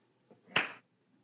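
single hand clap

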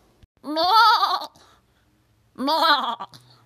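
goat bleating

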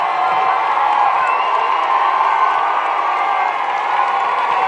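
crowd cheering

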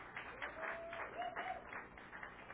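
audience clapping

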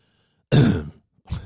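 throat clearing and coughing

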